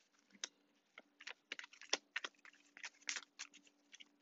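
A deck of tarot cards being shuffled, producing a steady stream of crisp, irregular taps and papery flicks with no one speaking.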